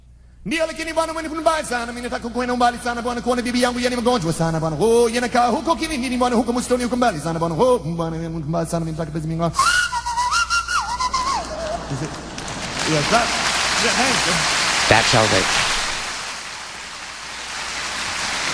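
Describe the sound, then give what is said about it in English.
A bright melodic whistled tune from a 1976 song recording by a Kenya-born singer, with harmony-rich accompaniment, plays for about ten seconds, then gives way to a dense, steady hiss like rain or crowd noise that swells and fades. “As we go to break, this is him in 1976. Remember, he's from Kenya. He knows Swahili and he can whistle.”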